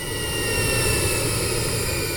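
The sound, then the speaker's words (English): A jet aircraft's engines roar loudly and steadily, a dense continuous rumble with a high whining hiss layered on top, unbroken throughout, with no voices. Both engines have exploded into flame, and the jet lurches to port and loses altitude. “Concussive booms shook the sky as both engines exploded into swirling balls of orange and black flame. The jet lurched to port and began losing altitude.”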